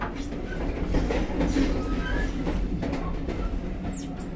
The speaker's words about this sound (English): As we come into Crewe station, squeaking and groaning over the points, past disused parts of high-speed trains and other carriages, across diamond crossings and into the station platform.